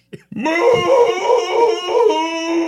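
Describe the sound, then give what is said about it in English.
A single long cow moo played from a moo sound-effect button, starting with a brief rising swoop and then holding a steady, buzzy, mid-pitched tone with slight wavering for over two seconds. A short click precedes it. “Is it the moo button?”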